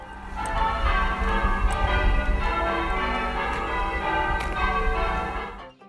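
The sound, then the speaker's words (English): Church bells rung by St John's Church bell ringers for the King's coronation ring in a dense, continuous peal, overlapping strikes layering into a rich, resonant wash that stays loud throughout before cutting off abruptly at the end. “As promised last week, we have more from the St John's Church bell ringers who did ringing for the coronation.”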